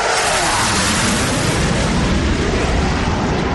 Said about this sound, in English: All right. That's the new jet.